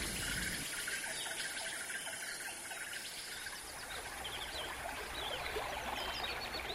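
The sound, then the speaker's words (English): The Clark Fork River flows steadily with a constant rushing hiss, while birds chirp and twitter lightly in the background. No voices are heard. “We took our Cub Scouts cleaning up the Clark Fork River.”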